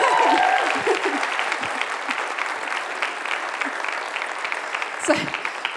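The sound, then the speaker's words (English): An audience at a church service breaks into steady, sustained applause for a first-time speaker, a dense wash of clapping hands that holds at a fairly even loudness throughout, with a few faint voices and a brief cheer near the end. “Can we just give a massive round of applause”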